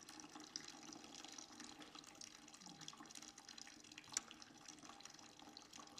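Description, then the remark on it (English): Water pours steadily into a vase, a continuous splashing, bubbling stream with a rising filling tone and a couple of brief clinks, with no talking. “So, Lord, as you fill this vase, would you fill the vases of our lives?”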